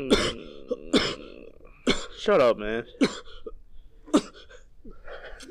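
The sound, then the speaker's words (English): Several short, harsh coughing or throat-clearing bursts spaced about a second apart, fairly loud, with a man's voice speaking briefly between them. “Were you sneezing or coughing?”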